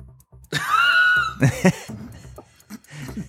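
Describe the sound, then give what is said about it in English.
A voice imitates a donkey's bray: a long, loud, wavering high-pitched wail followed by two harsh, raspy honks, then fading into low murmuring. “It's a donkey.”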